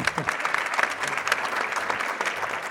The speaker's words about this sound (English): And likewise, we get a round of applause for Team USA.